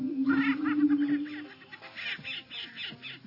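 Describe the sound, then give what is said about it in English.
A prairie chicken gives a low, humming boom that holds for over a second, then breaks into scattered clucking and cackling notes, clear with no voices. “Hey, there's that old prairie chicken right there.”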